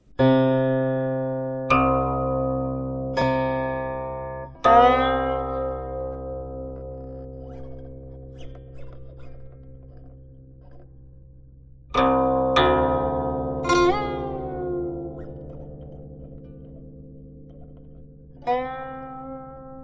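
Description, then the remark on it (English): Solo guqin music, the classic guqin piece Flowing Water: sparse plucked notes with bright attacks and long ringing decays, some sliding upward in pitch, unfolding in a slow, unhurried phrase with no voices. “If you're a long-time listener of our show, you're probably familiar with this classic guqin piece.”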